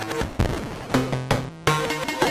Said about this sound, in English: And then add the CV back, we get these kind of percussive sounds and screeching sounds. And of course we're running through the data bender, because why wouldn't we?